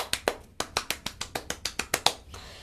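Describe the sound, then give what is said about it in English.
A short applause sound effect played for the Knicks' first win of the season: a quick, steady run of about fourteen crisp, bright claps, evenly spaced and fairly loud, with no voices, ending abruptly after a couple of seconds. “Let's hit the applause button for that.”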